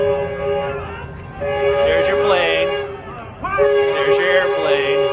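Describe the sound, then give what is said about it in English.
A train horn blares in a long, steady, loud tone over the rumble of a train running through a crashed airplane that landed on the train tracks, with excited voices and chatter rising over it at moments. “And there's the train running right through your airplane that you landed on the train tracks.”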